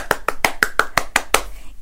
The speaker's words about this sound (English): Give yourselves a big clap if you managed to get all of those right. And give yourself a clap even if you didn't get them all right.